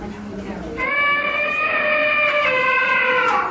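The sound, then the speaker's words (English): A timer app's alarm sounds: a loud, steady electronic tone with a bright, buzzy timbre that starts abruptly and holds for about three seconds over faint background murmur. “I like this little timer because you can have all kinds of nice sounds that it does.”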